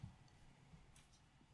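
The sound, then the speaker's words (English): A few quiet mouth clicks in quick, uneven succession, imitating a spider's chittering, with a sharper, louder click at the very end. No one speaks. “Says the spider. It sounds like clicking. Chitter, chitter, chitter, chitter.”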